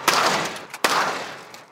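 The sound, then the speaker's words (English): A door is slammed shut three times in a test of whether it would break, each a loud, sharp bang followed by a brief rumbling decay, spaced unevenly about a second apart with no voices. “We tried slamming it over and over again.”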